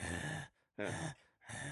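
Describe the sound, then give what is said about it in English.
Someone clears their throat in three rough, raspy bursts separated by short pauses, each fairly loud, with no speech around them. “Hold on, I gotta clear my throat.”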